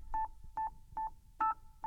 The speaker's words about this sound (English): Yeah, it causes it to have multiple notes in the metronome. So it's like it's playing tiny little chords at you.